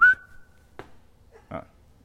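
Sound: person whistling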